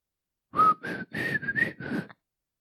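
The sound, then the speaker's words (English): A person whistles the short, bright jingle of an Old Spice TV commercial: about five quick notes in a bouncy phrase, lasting under two seconds, with no talking and silence before and after. “You know that little whistle tune they do?”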